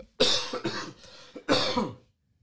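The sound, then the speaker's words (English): Two harsh coughs, one at the start and another a beat later, with a rough throaty rasp between them, loud with no talking. “That darn cough.”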